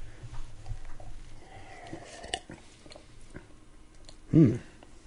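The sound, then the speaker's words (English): Quiet mouth sounds of someone taking a first sip and tasting a heavily carbonated beer: soft wet smacks and tiny clicks over a low hiss, ending in a brief voiced hum. “I mean, that's really one of the only things I tasted with that first sip was carbonation.”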